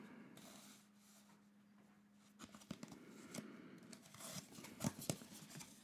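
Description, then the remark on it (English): A tarot card is pulled from a goddess tarot deck: after a quiet moment with faint hum, papery rustling, sliding and a few soft snaps, with no talking. “Okay, I'm going to pull a card.”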